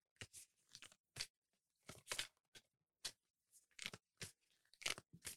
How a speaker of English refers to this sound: Yes, this deck is almost too beautiful for me to shuffle, but I'm going to shuffle it anyway, child.